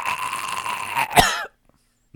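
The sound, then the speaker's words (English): A sneeze and a cough: a steady droning build-up breaks into one sharp, explosive burst that trails off quickly, then silence. No talking. “Sneeze and cough all in the same segment.”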